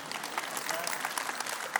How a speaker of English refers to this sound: You can clap for the man getting saved.